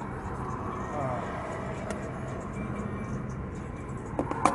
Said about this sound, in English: What is this car doing?